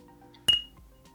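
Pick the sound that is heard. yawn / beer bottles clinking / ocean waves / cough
beer bottles clinking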